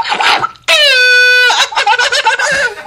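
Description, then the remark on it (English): A person imitates a wolf, letting out a loud, sustained, steady-pitched howl, then breaks into shorter wavering yelps and vocal noises. “Wait, can you do that one again, though? But can you add that howl thing that you did the first time at the end?”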